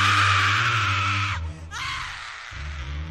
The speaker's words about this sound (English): When the humming still did not stop, she lost her temper. She jumped out of bed, pulled the covers off Jane, and screamed.